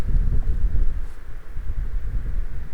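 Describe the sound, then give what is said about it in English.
A strong gust of wind buffets the microphone outdoors in nature, producing a loud, low rumbling roar that swells and churns steadily for a few seconds, dominant with no voices. “Oh, here comes another gust.”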